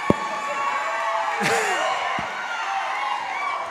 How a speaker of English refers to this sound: That's right. I love the screaming.